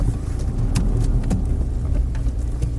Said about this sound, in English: We're now parking in the car park.